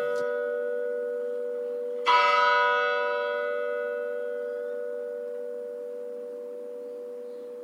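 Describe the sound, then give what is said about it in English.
A church bell in Mückmühl, southern Germany, strikes twice to mark 11:30 on a Sunday, about two seconds apart, the second blow louder, and its deep, humming tone rings on steadily and slowly fades. It sounds somewhat distant, with no voices. “So it always started with two strikes of the bell, because it's 11:30, and then you hear that sound.”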